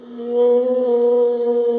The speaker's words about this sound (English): Whales.